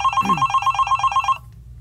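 A phone rings in a fast, regular trill of bright electronic pulses for over a second as a call to the Danish emergency services goes unanswered, then cuts off abruptly into a quiet, low background hum.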